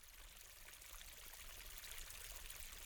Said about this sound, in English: As you get into this space, you can hear a small running water sound.